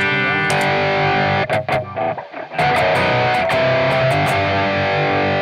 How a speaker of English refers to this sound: So you get that fixed wah … kind of sound. Yeah, that's a cool sound, kind of a lowish gain distortion